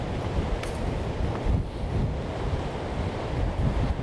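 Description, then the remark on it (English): Strong wind buffets the microphone outdoors in a steady low roar, with gusty swells and rumbling bursts, strong enough to blow objects over, no voices present. “Man, it's windy.”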